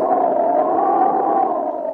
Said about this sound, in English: I do believe the storm is back. Must have been on a coffee break. Well, it's certainly making up for lost time now.